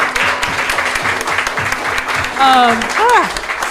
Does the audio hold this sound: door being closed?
no